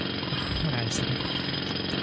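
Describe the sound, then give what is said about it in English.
A loud, steady mechanical racket fills the whole stretch, a dense pounding roar of a jackhammer being used outside, with a faint murmur of a voice underneath. “How am I supposed to experience the presence of God if you're using a jackhammer?”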